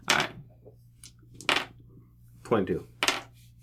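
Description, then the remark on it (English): Dice rolled for a diplomacy check in a game campaign clatter across a hard surface in four short, sharp rattling bursts spread over a few seconds, each one bright and clicky, over a steady low hum. “Okay, the dice are not in your favor.”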